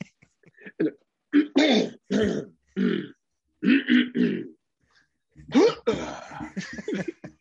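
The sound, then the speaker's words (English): A voice imitates a man repeatedly clearing his throat during a film in a movie theater: several gruff, raspy bursts come in quick clusters with short pauses between them, fairly loud, with no ordinary talk. “It's the guy was doing it the entire movie, and at first I was like, oh, maybe he's just, I thought he was just like clearing his throat, like he had like popcorn the wrong popcorn way or something”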